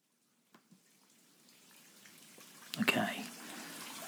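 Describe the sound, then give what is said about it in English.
Steaming hot water runs into a bubble bath in a bathtub with a steady hiss that builds gradually, a couple of small knocks early on, then a louder splashing surge near the end as the flow continues. “Bubbles, check. Steaming hot water, check. Rubber duck, check.”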